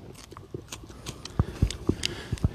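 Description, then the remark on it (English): Crisp crunches of a wild allium (wild onion) stalk picked in a forest being bitten and chewed, a string of sharp snaps at an uneven pace with quieter chewing between them and no voices. “Ooh, we'll give it a little crunch.”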